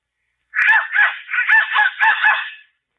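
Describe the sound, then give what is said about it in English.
A whistle blown in six quick raspy bursts, each a harsh, honking squawk more like a crow's caw than a clear tone, fairly loud and with no talking. “Who's blowing that darn whistle in here?”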